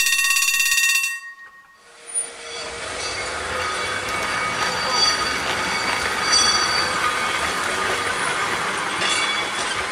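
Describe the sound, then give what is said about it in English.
An electric tram runs along its rails, opening with a brief ringing tone, then a steady rumble with high metallic wheel squeals that continues throughout. No one speaks. “because the trams aren't starting for another 3 weeks, which is a pity because it's our public transport as well as them being nice, but at least they are running.”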